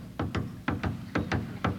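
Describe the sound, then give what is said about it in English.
A conductor's footsteps as he enters the orchestra pit of an opera house, walking at a steady pace, about eight clear steps in an uneven paired rhythm, fairly loud, with no voices. “Now I take you to the opera house, where you hear the conductor's footsteps when he enters the orchestra pit.”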